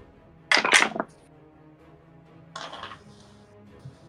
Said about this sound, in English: Don't you love the click clack of dice?